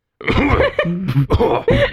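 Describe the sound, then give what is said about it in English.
A person fakes a coughing fit, several rough, voiced coughs and throaty hacks tumbling together in quick succession with brief gaps, loud and theatrical. “As all of you are breathing heavily, Sigorum begins coughing. Serdu begins coughing.”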